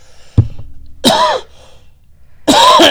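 A sharp thump as the microphone is accidentally hit, then two loud, raspy coughs, spaced about a second and a half apart, with no talking.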